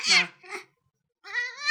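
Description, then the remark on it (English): A female cat named Gizmo meows three times: two short, scratchy calls in quick succession, then a pause and a longer, clear, tonal meow that rises in pitch and grows louder at the end. “This is my cat Gizmo.”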